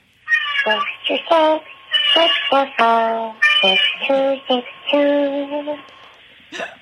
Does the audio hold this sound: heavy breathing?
no